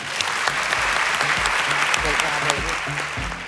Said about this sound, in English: Another round of applause for all at the CBRE Women's Network for making this show possible.